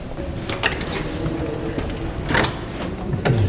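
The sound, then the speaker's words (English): Big, heavy-duty wooden doors creak and thud open into the office suite of the former Secretary of State for War, with a few sharp knocks and clunks of handles or latches over a low, steady rumble; nobody speaks. “Got big, heavy-duty wooden doors.”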